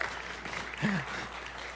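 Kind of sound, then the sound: crowd, audience applause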